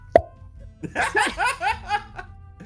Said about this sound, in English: The not formians then go to a corner of the area where it's dirt, and they just like plop, plop, plop, like gophers down this handmade, hand dug tunnel. Sorry, here's the sound effect.